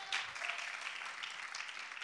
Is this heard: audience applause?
yes